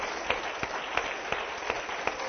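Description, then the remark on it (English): An audience at a church worship service gives the Lord a glory clap, a steady wash of applause punctuated by sharp, evenly spaced claps about three times a second, moderately loud with no voices. “Just give the Lord a glory clap.”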